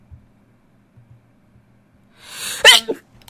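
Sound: sneeze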